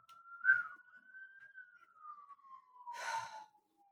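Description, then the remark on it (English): A lone police-siren wail holds a high, steady pitch and slowly sinks over a few seconds, with breathy bursts near the start and end, like a person imitating the siren. “It's made me set off my sirens.”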